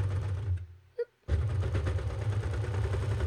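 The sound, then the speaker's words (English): A serger sewing machine stitches fabric with a loud, rapid, steady mechanical whir, stops briefly with a faint click partway through, then starts up again and keeps running. “Okay, so I'm just gonna start serging.”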